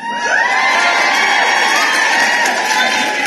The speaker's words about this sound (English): Cheering, celebrating her. And remember, they're not just celebrating her.